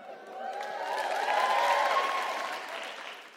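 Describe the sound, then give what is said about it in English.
An audience breaks into steady applause, a dense wash of clapping that swells to a peak midway and then eases off slightly, with a few faint cheers mixed in. “That's previous applauding.”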